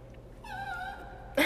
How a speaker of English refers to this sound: Sorry, that's my little doggy.